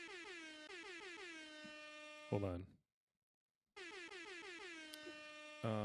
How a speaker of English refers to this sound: That was me trying to do the air horn. I must say, I think I failed miserably here, but it is the first set.